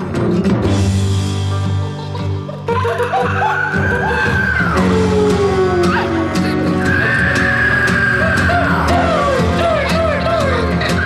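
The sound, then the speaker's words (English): A loud, dense song in mono, with a thumping kick drum and bright crash cymbal hits cutting through, while sliding vocal lines swoop over the full mix. “the mono has the full effect of the kick and the crash, while the stereo fades in somewhat.”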